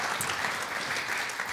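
A church audience claps steadily in a dense, continuous wash of overlapping hand claps, loud and even throughout, with no voices standing out.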